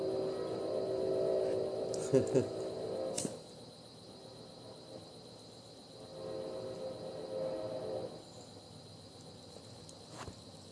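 A train rumbles past in the background, a low sustained drone with rattling clanks that fades out after a few seconds, then swells briefly again before quieting.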